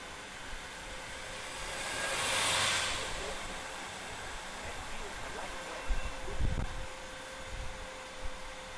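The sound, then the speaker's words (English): Two trams and a shuttle bus rush past a moving tram at the Disneyland Resort in California, each with a broad swell of noise, then gusts of wind from the passing vehicles thump and rumble against the microphone in a few low bursts over a steady outdoor hum. “We had two trams and a shuttle bus going by, and each time they go by, the wind gets pretty intense.”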